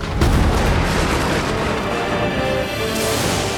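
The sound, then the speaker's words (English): A lightning bolt shoots down from the sky and strikes a hammer: a sharp, loud thunderclap cracks at the start and gives way to a heavy, sustained rumble that rolls on steadily for several seconds, with no voices. “Thor watched in horror as a bolt of lightning shot down from the sky, striking Thialfi's hammer and sending him flying.”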